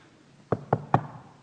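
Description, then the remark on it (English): Three firm knocks on a door in quick, even succession, moderately loud, with a hollow wooden thud. No voices, just faint quiet around them. “Rahab had the king, probably the king's messenger, knocking at her door.”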